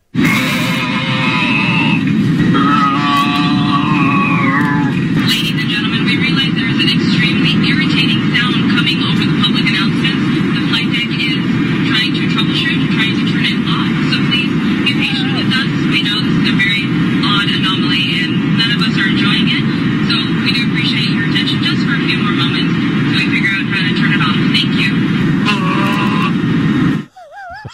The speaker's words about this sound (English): I wish they had more of the sound. So a dude, maybe a woman, but somebody hacks into the sound system of a plane and you go with that, just kind of weird noises.